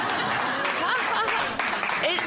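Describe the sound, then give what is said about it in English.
A crowd claps steadily in a dense, unbroken patter. Some scattered voices and cheers rise over the applause throughout. “Who is fucking clapping?”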